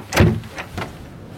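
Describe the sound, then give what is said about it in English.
A broom cupboard door opens: a heavy knock as it unlatches, then two lighter clicks and rattles as it swings, with no voices. “Door handle down on your left.”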